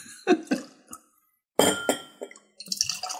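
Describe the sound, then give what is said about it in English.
An empty clear glass clinks sharply a few times as it is set down and lined up on a hard surface, with short bright knocks in separate bursts and a brief quiet pause between them. “Old 18 is going to be in a clean glass. Not really clean. Clear. Empty.”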